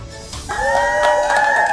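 A rowdy crowd of deplorables and War Room posse on the War Room show cheers steadily for about two seconds, with sustained high whoops and yells rising over a dense, constant wash of noise.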